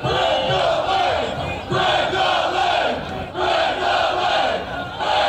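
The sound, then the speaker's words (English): A large crowd of Rams fans cheers and roars continuously for Greg Zuerlein at a send-off rally at the team's future stadium site in Inglewood, California, with rhythmic surges of chanting voices rising and falling in loud, dense waves throughout. “Now you can hear them right there, all the fans cheering for Greg Zuerlein, and I wasn't there personally, but just seeing the sights and sounds on social media, it really looked awesome out there at the LASED site, so definitely kudos to you fans.”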